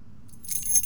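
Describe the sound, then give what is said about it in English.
Car keys jangle for about half a second, a bright clinking rattle as they are picked up off a plate on a sideboard next to the front door, with no talking. “As I went to grab my car keys from the Princess Diana plate that sits on top of the sideboard next to the front door”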